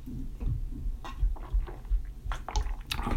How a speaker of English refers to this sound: Let's take another drink real quick.